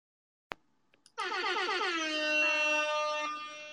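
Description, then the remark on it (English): A loud air horn blast rings out after a sharp click and a brief stutter, holding a long bright harmonic tone for a few seconds with no voices. “Air horn for that.”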